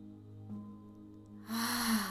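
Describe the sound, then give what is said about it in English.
One of five cleansing breaths in a guided breathing exercise: a single deep breath drawn in through the nose, a rising airy hiss that swells loudly near the end over a low steady hum, with no talking. “So breathing in through the nose.”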